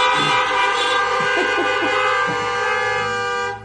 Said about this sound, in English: If you agree with that, honk your horns, please.